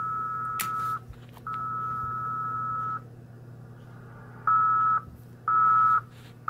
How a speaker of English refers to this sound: If you listen, that is very slow Morse code. It's about a half a word per minute. There was a K. That was a U. That was a B.